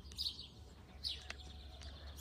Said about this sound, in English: Wow, some nice bird sounds here.